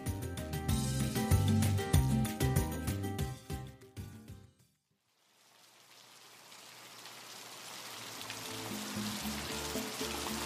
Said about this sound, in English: We're in Cali. There are two kids outside playing with the family dog, Simca. It's pouring rain, but they don't mind. The rain adds drama to the scene they're acting out.